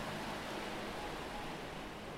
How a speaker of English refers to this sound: The light is turned off. The house is quiet. You can all hear the waves as they splash onto the shore.